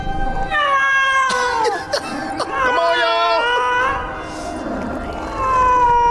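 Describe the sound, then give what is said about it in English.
A human voice imitates a cat's drawn-out, wavering yowl for a CGI cat on screen, loud, with sliding pitch over several seconds, while other people talk briefly around it. “I never even thought about it, but you can tell that's a human making that cat sound.”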